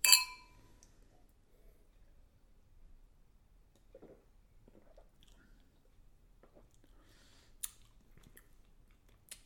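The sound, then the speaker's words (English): Beer glasses clink together once in a toast, a bright ringing tap that fades quickly, followed by quiet small clicks and faint sipping sounds with no talking. “Cheers. Cheers.”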